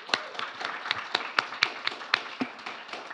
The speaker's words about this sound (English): So let's just break the ice and give them a warm round of applause.